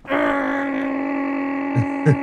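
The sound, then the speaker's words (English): A voice imitates the drone of a vent cleaners' big vacuum truck: a sustained, steady low hum held for about two seconds, with two brief guttural bumps near the end. “And she said, no, the guys with the big truck, with the big vacuum truck that suck. Oh, I said, you mean the thing that makes the noise that goes like this?”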